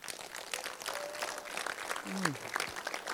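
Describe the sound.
An audience claps steadily throughout, a dense crackle of many hands at an even loudness, with a brief voice or cheer rising out of the applause partway through.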